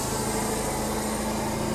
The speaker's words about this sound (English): There's one of these giant RV people.